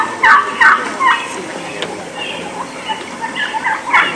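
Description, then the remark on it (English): Several wild turkeys call in rapid, overlapping bursts as they pile out of a roost tree, with scattered calls continuing between louder outbreaks against a soft outdoor background. “Look at them all pile out of the tree. That's what every turkey hunter right there dreams about.”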